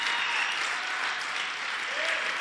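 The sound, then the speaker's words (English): Sustained applause from a church audience clapping for the Lord, many hands clapping at once, a dense, steady wash of claps that stays loud and even for the full stretch with no voices breaking through. “If you are excited, why don't you appreciate the Lord with a hand clap?”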